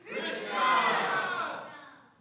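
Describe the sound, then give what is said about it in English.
A large crowd shouts the word "Krishna" together on a count of three in one sustained, loud unison cry lasting about two seconds, swelling then fading, with many voices blended into a broad roar. “So he yelled very loudly, Krishna, on three. One, two, three.”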